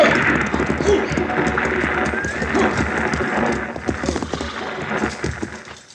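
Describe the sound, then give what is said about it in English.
A six-horse stagecoach team thunders along, hooves clattering densely and loudly throughout, with an occasional whinny rising above the steady rumble as the team approaches. “Driving a six-horse hitch ought to keep him awake.”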